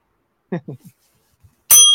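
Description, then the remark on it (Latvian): A smartphone's Siri voice assistant activates: a few short spoken syllables, a brief pause, then a bright electronic chime that rings out loudly and holds to the end. “Kas ir telefons runā? Siri.”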